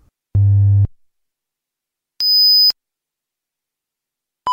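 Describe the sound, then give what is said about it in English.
Three separate electronic test tones from an audiometer during a hearing test in a soundproof room, heard through headphones, each at a different pitch: a low hum-like beep, then a high thin whistle, then a mid-pitched tone cut off at the end, with silence between them. “The beeps are made by an audiometer, which produces sounds at different volumes and frequencies.”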